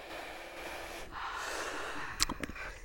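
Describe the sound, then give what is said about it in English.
A long, airy breath drawn in, followed by a couple of quick, sharp nasal puffs as it is let out. No one speaks. “Should we, everyone, take a deep breath.”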